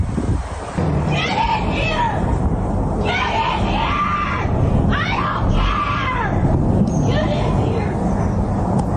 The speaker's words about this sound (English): That is the greatest speed away ever. She literally drives away as she's screaming.